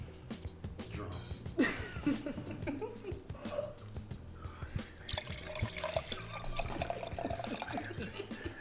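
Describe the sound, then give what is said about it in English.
Liquid pours steadily into a cup, a splashy, trickling stream that grows fuller and brighter midway through, with low voices murmuring in the background. “You know what's up when I'm pouring up.”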